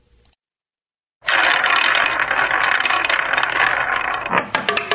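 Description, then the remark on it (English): A spinning wheel clatters loudly with a rapid, continuous rattle of clicks after a brief silence, the individual clicks becoming more distinct as it slows near the end. No one speaks. “fire up that wheel.”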